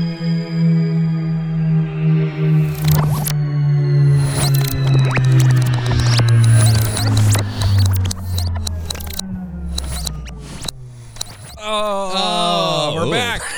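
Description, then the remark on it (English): A sci-fi time-travel sound effect for a DeLorean time machine going back to 1980: a loud, steadily descending drone crackles with repeated zaps and bursts, then gives way to a wobbling, warbling high-pitched squeal at the end. “Hop in the DeLorean and let's go back to 1980.”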